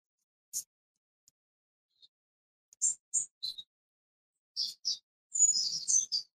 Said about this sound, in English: wherever you are sounds extremely peaceful. With the birds and stuff? I'm in quite a special place. I'm in a monastery. It's an old monastery by nuns who are living here.